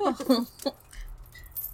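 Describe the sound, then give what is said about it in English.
A short, light jangle of metal room keys being handed over, a few quick clinks over about a second, with a brief voice murmur at the start and quiet background noise afterward. “Here are the keys to your rooms, and I'll just give the last one to the two out there that are singing.”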